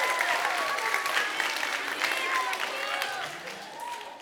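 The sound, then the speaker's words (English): An audience claps steadily for about four seconds, a dense, even patter of many hands with a few faint voices mixed in, fading slightly at the end. “We can clap for that.”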